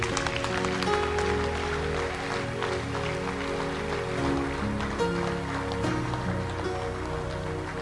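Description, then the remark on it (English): An audience claps their hands at the close of a prayer in a dense, steady wash of applause that holds at the same loudness throughout, with sustained musical tones humming beneath it. “Clap your hands.”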